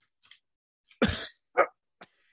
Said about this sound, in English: Like he coughs, like he's in mid-drag and just like starts coughing.